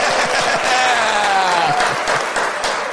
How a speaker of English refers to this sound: Yay! Where's the clap track?